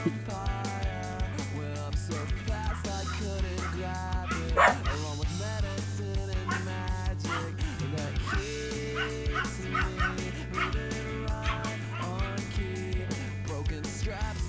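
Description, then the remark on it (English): Two friendly dogs bark and whimper, with a mix of deep woofs, higher yips and soft whines recurring throughout, over a steady low background hum. “We got two very friendly dogs here.”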